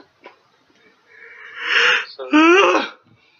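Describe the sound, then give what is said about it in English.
A breathy, rising inhale builds up and then breaks into one loud, voiced sneeze, with a short quiet pause between the two. “Bless me. Thank you. I bless like sneeze.”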